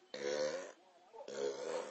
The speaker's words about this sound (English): Bless you. I burped, but okay, thank you.